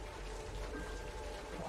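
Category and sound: nature, rain falling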